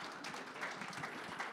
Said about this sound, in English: All right, I'd like to give a warm round of applause to our panelists. Thank you guys so much.